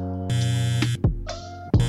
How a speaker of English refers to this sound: What's that? Oh, it's just my phone.